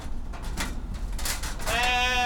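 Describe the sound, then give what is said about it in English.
A single wavering goat bleat rises near the end, loud, after a stretch of scattered farmyard rustling and thumps, on a farm where people pet goats while carving pumpkins. No one speaks. “The farm is most known for their goats, which people can pet while they carve pumpkins from the patch.”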